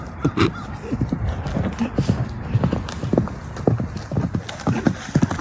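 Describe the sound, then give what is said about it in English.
A horse runs away, its hooves clip-clopping in a quick, steady rhythm, a continuous run of sharp hoofbeats at fairly constant loudness over a soft background hiss. “Horse kicks away. Tree, farts on dogs, then runs away.”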